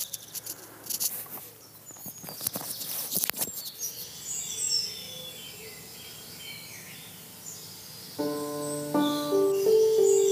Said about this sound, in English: Not sure if the microphone's going to pick this up, but I'm walking through some trees and the bird song is just incredible.